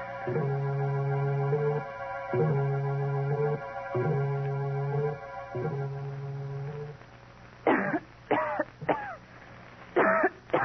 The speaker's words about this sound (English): Then I went to bed and waited impatiently for Agatha to start coughing